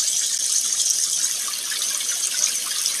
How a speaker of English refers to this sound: I head to the sink so I can wash the germs off my filthy 6-year-old hands.